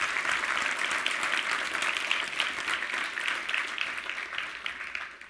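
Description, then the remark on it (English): A church audience applauds with steady, dense hand clapping that holds fairly loud and even for several seconds before tapering off at the end. No one speaks. “Give these guys a hand clap today.”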